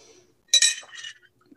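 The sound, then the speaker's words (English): A glass gives a bright, ringing clink as water is drunk from it, followed by a second softer chime, then a faint low tap as it settles. No one speaks. “Drink a little water here.”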